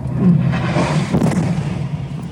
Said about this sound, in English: We're warned of a missile strike incoming and leave.